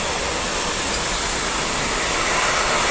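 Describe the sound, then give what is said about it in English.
A loud passing train covered in graffiti fills the whole clip with a steady, dense roar and rumble, unbroken from start to finish, with no voices. “That's a really loud train.”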